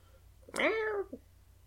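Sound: cat meowing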